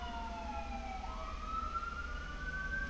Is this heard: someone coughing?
no